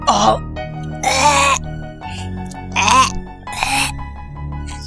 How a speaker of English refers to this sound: It's like coughing up hairballs is what that sounded like.